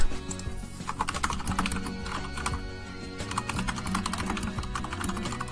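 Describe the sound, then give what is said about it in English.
Rapid, uneven typing on a computer keyboard while a question is written out for Twitter, a dense run of clicky keystrokes with brief pauses, over a low background hum with no one speaking. “So please enjoy the sound of keyboard noises on Radio Sega.”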